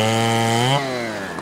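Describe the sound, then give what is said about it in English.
A loud chainsaw engine revs up steadily as it cuts a sprinkle in half, its buzzing whine climbing in pitch before dropping abruptly as it bogs down, with no talking. “Wow, you are really good with that chainsaw.”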